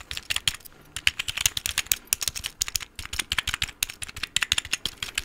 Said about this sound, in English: This one I found at the thrift store, and I was like, I gotta get this because, hello, handheld typing sounds. Clearly, I'm a fan. How do I type with this shit?